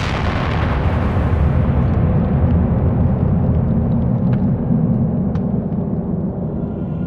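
massive explosion

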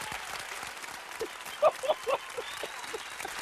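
round of applause

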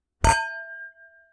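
wine glasses clinking

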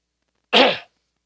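throat clearing

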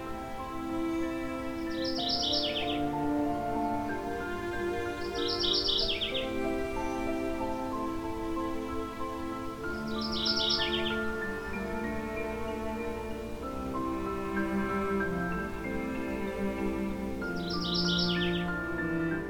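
mourning warbler song

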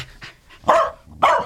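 dog barking

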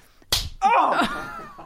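hand slapping a person

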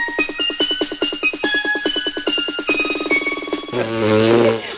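fart sound effect

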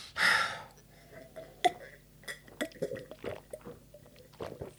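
sipping a drink

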